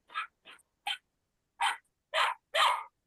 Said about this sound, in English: This is a dog.